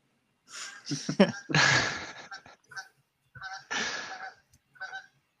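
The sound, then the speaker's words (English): A single goose flying overhead honks repeatedly in short, irregular nasal calls, fairly loud and clear, with brief pauses between bursts and no talking over it. “we got a singular goose flying overhead.”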